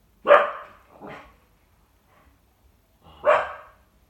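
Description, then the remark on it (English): A dog barks twice in quick succession, then once more after a pause, each bark sharp, with quiet between them and no one talking. “So as our dog barks, it is time to conclude.”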